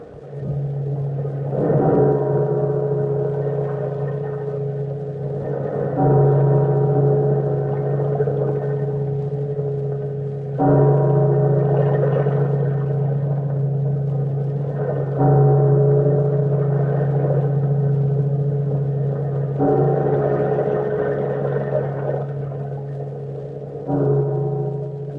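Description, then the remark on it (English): Deep gongs toll slowly, about six strokes roughly four seconds apart, each leaving a long humming, resonant ring that overlaps the next. No voices. “It's a lot of gongs, and it's a lot of water rippling right there, at least on that.”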